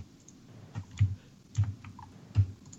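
Heavy, hard strikes on a computer keyboard, several loud thumping clicks at an irregular pace, close by with no talking.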